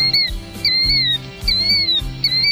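A killdeer (Charadrius vociferus) calls four times in steady succession, each shrill, piercing note sliding up then down, loud over a low, rhythmic background hum.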